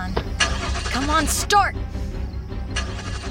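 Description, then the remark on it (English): A car engine in a car park turns over and settles into a steady low rumble, broken by a few sharp bursts and a brief strained vocal cry partway through. “Just as the engine turns over, the masked man approaches Madison's driver window.”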